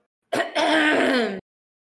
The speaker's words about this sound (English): So you go up to the first kind of metal hovel in the wall. And I cough and go...